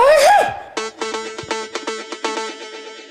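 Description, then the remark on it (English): One quick, loud sneeze bursts out at the start, then a bright, bouncy musical jingle with repeating rhythmic chords takes over. “Did you know that a sneeze can produce up to 40,000 droplets?”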